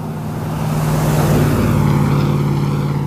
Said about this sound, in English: And there it is. Bloody loud pickup truck, too. But it is a diesel. And diesel pickup trucks tend to be loud. So. Also sounds louder here because that's how quiet it is.